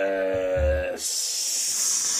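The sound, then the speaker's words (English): A deep fryer sizzles with a bright, steady hiss for just over a second, right after a brief tonal, droning sound with a low rumble. “Rev up those fryers. I remember my first sizzling hot take.”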